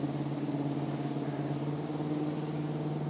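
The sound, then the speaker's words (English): A steady, low engine drone with a constant hum holds evenly throughout as a big hybrid party boat goes past a dock, without pause; no voices are heard. “There goes a boat. Oh, that's kind of a big one. Kind of like a hybrid party boat.”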